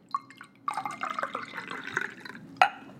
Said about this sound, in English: So let's go ahead and crack this guy here, and we'll review the Bible Bourbons and Brews Holiday Hard Cider. Oh, yeah. Love that sound. Delicious. Smells so good. All right, let's give this guy a pour.